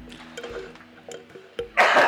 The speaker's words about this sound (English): Sorry, I was about to say something, then I coughed.